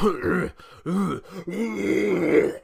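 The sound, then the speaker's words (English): A voice imitates a guttural, phlegmy throat-clearing noise in three rough, growling bursts, the last one drawn out and strained, fairly loud with no other sounds around it. “We both are beset with phlegm and everything right now, and we sound terrible together.”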